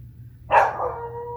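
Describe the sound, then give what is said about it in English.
A single sharp, loud dog bark rings out, trailing off into a faint whine over a low background hum. “And that dog.”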